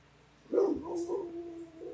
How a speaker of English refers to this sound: What is that dog barking at? No, what are you barking at out there?